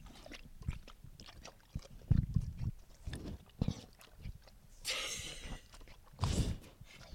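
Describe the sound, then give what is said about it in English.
Carlin, a pet, laps and slurps water in a quick, irregular series of wet clicks and gulps, broken by two louder breathy snuffs near the end as he sniffs the microphone. No one speaks. “That's Carlin drinking in the background.”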